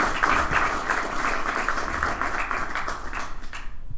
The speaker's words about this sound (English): So I want to give a round of applause to the comedians that I had on the show tonight, and you know, for helping do this thing.